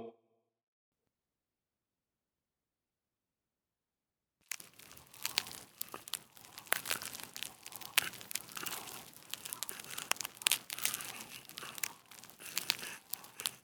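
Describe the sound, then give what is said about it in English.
After a few seconds of silence, a crackling campfire starts up and continues steadily, a dense hiss of crackle broken by irregular sharp pops and snaps, fairly loud throughout. “The crackling fire seemed unusually loud.”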